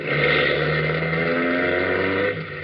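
A car engine hums steadily, a loud, even drone with a low rumble that holds throughout and eases slightly near the end, with no voices.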